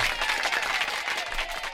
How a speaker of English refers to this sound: Not only have you won the quiz, you've got two rounds of applause on tonight's show for coming back and winning it.